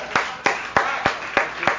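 An audience applauds a performer on request, for managing to say the Carfax Fox: six sharp, evenly spaced claps over a soft, continuous background hiss, with no talking.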